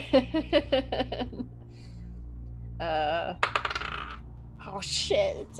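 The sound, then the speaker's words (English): Dice for a persuasion roll in a tabletop game clatter across a hard tabletop in a quick burst of sharp clicks, followed by a few more scattered rattles, with a brief murmur of voices in between. “Can you make a persuasion roll? Oh, God. Where's my yellow dice?”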